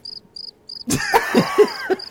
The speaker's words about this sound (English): Crickets. Crickets.